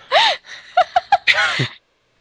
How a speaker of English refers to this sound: Are you making yourself sneeze? Why? Because I had one that wouldn't come out. And then once you get started, it's just so much fun to keep going.